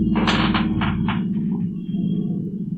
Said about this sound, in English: I think that was a low-flying airplane. There's a small regional airport near here, so we often get private planes and stuff flying pretty low.